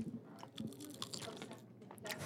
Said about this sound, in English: Someone try to get a crunch in the microphone. See if that can happen. Let's see. Oh, here we go. Here we go.